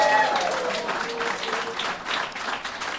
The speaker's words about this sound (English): And also, let's have a round of applause.